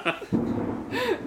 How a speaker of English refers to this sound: I kind of like the thunder and lightning.